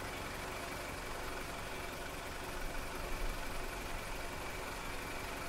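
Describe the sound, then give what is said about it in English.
A car engine labors as it struggles to start, a steady rough churning with a slight surge partway through, moderately loud, with no voices. “You're not going anywhere. Duncan, your car's not starting.”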